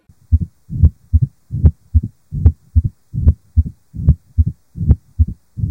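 A steady heartbeat repeats about seven times, each beat followed by a low-pitched rumbling mid-diastolic murmur. It is clear with no voices, like listening through a stethoscope.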